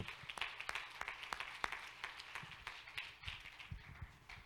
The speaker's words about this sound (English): Somebody clap your hands and love him today.